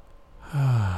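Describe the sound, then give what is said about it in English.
A steady breath drawn in slowly through the nose during a guided whole-body relaxation exercise, a soft airy rush that swells in and holds at an even level, with no talking. “Long, slow inhale.”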